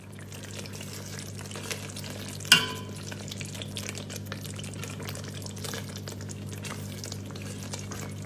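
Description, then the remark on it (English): Steady frying crackle and sizzle of Indo-Sichuan chili sauce being made, a dense fizzing texture with a low hum beneath and one sharp clack about two and a half seconds in. “Here you can hear the crackling sounds of Indo-Sichuan chili sauce that Nick is making.”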